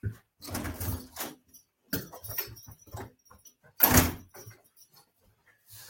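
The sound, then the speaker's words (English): A door latch rattles and the door swings open to let dogs in, with a few clunks and shuffling, then a sharper knock or bang as it moves, with quiet gaps between. “Let me just let these dogs in so we don't have the audio of that.”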